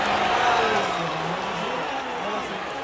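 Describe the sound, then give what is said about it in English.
A large baseball stadium crowd makes a steady, dense roar of murmuring voices and cheering as the pitcher is taken off the mound, holding at an even level for a few seconds with no distinct booing. “It says Max Scherzer getting booed off the mound and never does.”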